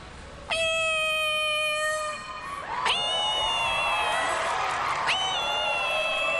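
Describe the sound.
A woman imitates a cat, producing three long, drawn-out meows one after another, loud, each rising sharply then sustaining with a whiny, nasal tone.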